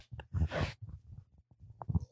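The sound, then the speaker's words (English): A muffled, low burp, made away from the microphone, rumbles in a few short throaty bursts over about two seconds with no talking. “I burped away from the mic.”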